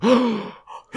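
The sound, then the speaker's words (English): A loud, exaggerated voiced gasp by Sofia Vergara, drawn out and wavering, followed by a short breathy intake and the start of another, like a theatrical shocked gasp. “And Sofia Vergara has the worst gasp of all time.”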